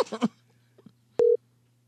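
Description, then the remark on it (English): A single short, loud telephone keypad tone sounds as a phone call is dialed, a steady beep lasting a fraction of a second, preceded by a brief cough-like throaty noise and a couple of faint clicks. “I'm on a phone call roll lately.”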